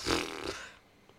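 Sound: yawning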